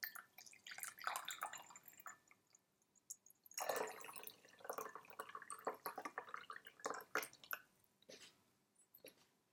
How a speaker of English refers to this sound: So I'm just going to go pour this one out, pour this cold brew out. And then I'm going to pour the hot brew out.